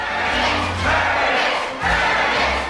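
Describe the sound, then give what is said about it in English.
A large crowd roars and shouts continuously as a man comes out, a dense wall of cheering voices with swelling peaks, loud, with no single speaker standing out. “Here he comes, and this crowd is ready for him.”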